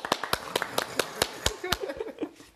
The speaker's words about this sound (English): We're the only two clapping there's no one else in the room,